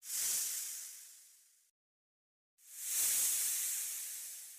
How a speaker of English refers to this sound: We can pull up a noise for a black mamba. It's not going to be much, but here it is.